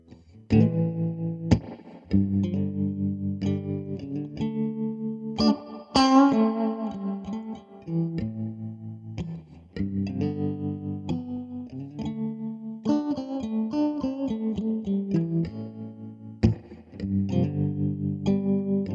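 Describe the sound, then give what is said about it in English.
An electric guitar plays a run of sustained chords and melodic notes through effects, with a chorus-like shimmer and some distortion, steady and fairly loud for the whole stretch with no voices. “Here's some guitar.”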